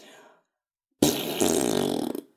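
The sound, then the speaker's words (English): A loud, buzzy fart noise blown with the mouth as a 'time fart' to skip forward in time, lasting just over a second with a sputtering, rippling texture, following a brief trailing bit of speech and a short pause. “So, do you want to do the time fart or do you want me to do it?”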